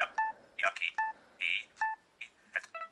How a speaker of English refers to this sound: then you heard a double beep. This double beep means that you're back at the default.